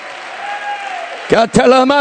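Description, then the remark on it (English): A large audience at an evening church service fills the room with a steady wash of clapping and cheering as a shout of praise, then loud voices burst out in sharp, ringing shouts near the end. “Would you clap your hands one more time and give Him a shout of praise?”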